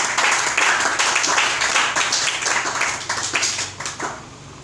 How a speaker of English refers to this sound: Let's clap on for the grace in this world.